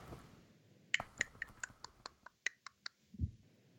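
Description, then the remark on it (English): A voice imitates slow one-finger typing on a computer, done with just the pinky, with a quick run of about a dozen sharp mouth clicks, unevenly spaced, ending in a low thud-like sound. “That's my typing noise.”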